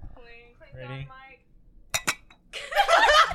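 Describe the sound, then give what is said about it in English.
Two quick, bright clinks of drinking glasses touching in a toast, right after some voiced murmuring, followed by a burst of loud, noisy commotion. “So let's get a clink on mic.”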